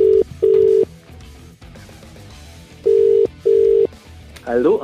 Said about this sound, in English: We have a phone number here. Let's make that call.